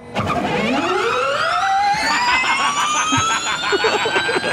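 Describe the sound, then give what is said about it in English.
A Formula E electric race car accelerates, its high whine sweeping steadily upward in pitch and then holding a bright, loud, layered electric tone with no engine rumble. “So then I wanted to pick up a real modern race car, and I wanted to see what you thought of the sound of this.”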